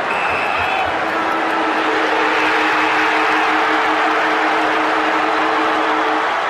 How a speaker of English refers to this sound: 4 seconds, 3 seconds, 2 seconds. Listen to the crowd.